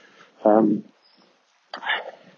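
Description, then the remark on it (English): A nearby dog lets out a loud, short whining yelp, then after a brief pause a second rougher bark-like cry, outdoors with no talking. “I think it's some kind of greyhound”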